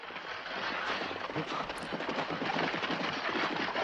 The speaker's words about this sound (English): But by and large, the sound of the military are these horse hooves. And they are. They're scary.